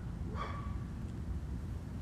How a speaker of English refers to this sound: Don't be saying the word B-I-T-C-H, because the dogs are gonna go bark everywhere and they won't shut up.